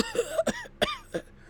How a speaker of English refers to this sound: She uses a phaser to shut a gushing wound and injects something into him as he coughs up blood.